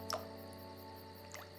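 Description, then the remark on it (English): Two small, soft water drips plink a second apart against a steady low hum, each a brief bright plop as a still water surface is touched. “Let's touch our reflection in the water, too.”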